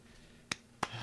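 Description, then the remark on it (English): Two sharp hand claps, spaced about a third of a second apart, each crisp and brief, with no talking around them. “That's my hands clapping.”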